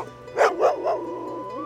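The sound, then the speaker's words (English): A dog, Sholo, with freezing fur gives three quick, evenly spaced barks, followed by a softer, drawn-out whimpering tone as the barking trails off. “Nezahualcoyot ran his fingers through the dog's freezing fur.”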